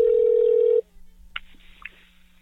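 A steady telephone dial tone drones loudly, then cuts off, followed by a few quieter, brief dialing beeps over a faint line hum, with no voices, as a phone call is placed to someone in Long Island.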